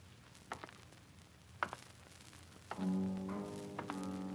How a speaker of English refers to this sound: A man walking along a cobbled street in Whitechapel. It's an April evening and a pleasant one. A spring rain has just finished and the street lamps spread skins of light over the wetted pavements.